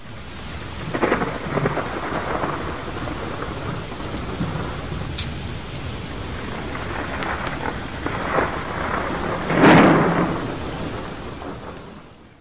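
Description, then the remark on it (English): Steady rain hisses throughout while deep thunder rolls and rumbles repeatedly, with a louder crack of thunder near the end; no voices are present. “Renee's charging up, but we are surviving the storm here, or at least Renee did.”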